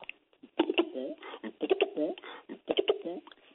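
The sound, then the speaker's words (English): A man's voice imitates pigeon cooing: throaty, rolling coos delivered in three quick bursts, moderately loud, with no other sounds around them. “I imitate the pigeons. I make sound just like the pigeons.”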